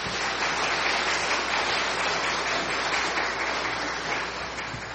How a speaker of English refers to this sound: Well, that was pretty good, huh? How about we give those kids a round of applause?